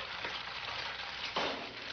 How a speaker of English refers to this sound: So he cracks the egg, it's frying in the pan.